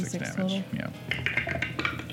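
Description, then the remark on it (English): Metal dice rolled for 3d6 damage in a tabletop role-playing game clatter across a table in a quick burst of sharp, bright clicks and rattles, settling over a couple of seconds while a voice talks underneath. “Rolling some metal dice there.”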